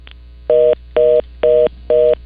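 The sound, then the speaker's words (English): A telephone line tone from a failed call: four loud, evenly spaced electronic beeps in a quick on-off rhythm, heard alone over a faint low hum, with no talking. “We've had some phone issues, so we're having technical issues.”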